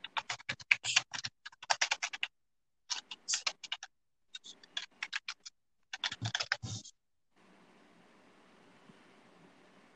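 Rapid clicking of a computer keyboard as a man types comes in several short bursts with brief pauses between them, fairly crisp, then gives way to a faint, steady background hiss.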